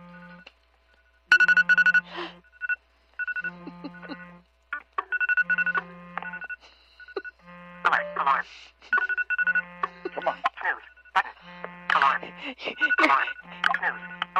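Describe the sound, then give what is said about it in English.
Phone and smart speaker alarms (Siri and Alexa) going off together, a steady pulsing low beep overlapped by layered chiming electronic melodies that grow busier and louder, with no talking. “All of my alarms are coming on.”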